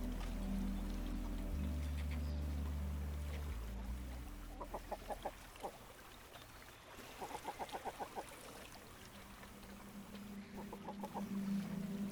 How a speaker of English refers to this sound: You notice seagulls, gannets, kittiwakes, and frigates.